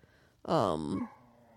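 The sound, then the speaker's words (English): A dog lets out one loud, drawn-out bark that slides down into a whimpering whine, lasting about half a second, with near silence before and after. “My dog is going nuts right now.”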